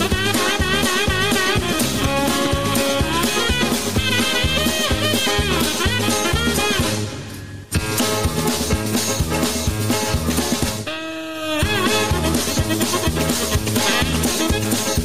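A fast, bouncy comic chase tune plays loudly with a brisk, steady rhythm and bright, busy melody, briefly dropping out twice before snapping back in; no voices.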